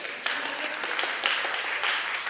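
A group applauds steadily, many overlapping hand claps forming a dense, bright wash of sound at even volume, with a few sharper claps standing out now and then.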